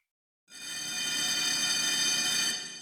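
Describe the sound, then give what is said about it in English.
A bell rings out suddenly to signal that time is up, holding a bright, steady, metallic tone for a little over two seconds before starting to fade. It is loud and clear, with no one talking. “That bell means we're out of time.”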